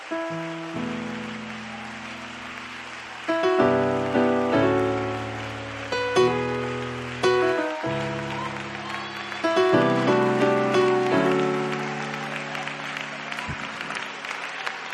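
A standing audience claps their hands in praise to God in a dense, steady patter, mixed with sustained keyboard chords that shift every second or two, loud throughout.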